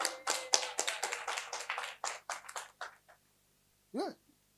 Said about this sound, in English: That's why when I say I'm transferring you, willing, must be happy and clap your hands.